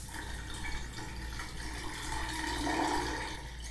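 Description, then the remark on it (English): Steady hiss of shower water running continuously, a broad splashing wash that swells slightly toward the end, with no voices and no clear moment where the flow stops. “Anyways, I think I can safely say I have no acid on me, so I can turn the shower off.”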